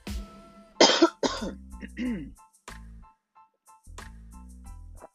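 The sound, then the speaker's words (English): A sharp, loud cough bursts out as something catches in the throat, followed by a few rough throat-clearing sounds and smaller hacking coughs, with brief pauses between them. “I don't know what got in my throat just now.”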